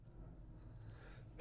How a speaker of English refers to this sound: oh, jeez. Had to sneeze.